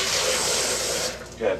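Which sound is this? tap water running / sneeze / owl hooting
tap water running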